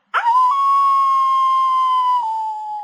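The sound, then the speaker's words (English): A single long, loud howl rises sharply, then holds a steady, slightly falling pitch for nearly three seconds, sounding wolf-like and eerie, with no talking. “Werewolves like to howl.”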